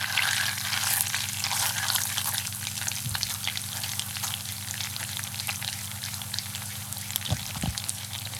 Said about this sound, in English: The same change happens when you're browning the butter The bubbles go from large to small and foamy. And then you whip the butter off the heat quickly before it has a chance to burn too far.